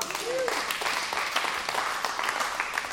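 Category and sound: crowd, audience clapping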